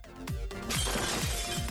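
A loud burst of glass shattering into shards as a slammed carpet explodes into glass, a dense crashing spray that keeps going, with deep falling booms pulsing underneath and no voices.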